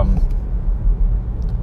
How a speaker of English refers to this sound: You hear that car? You hear my car just powering through this traffic?